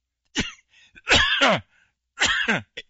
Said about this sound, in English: I thought I could get through without coughing, but I didn't.